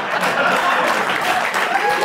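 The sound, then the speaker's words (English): An audience breaks into applause, a dense, steady wash of many hands clapping at an even, fairly loud level for about two seconds, with a few faint voices mixed in. “Don't clap!”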